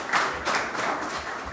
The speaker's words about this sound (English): We got our last panelist just in time. Round of applause for our last panelist.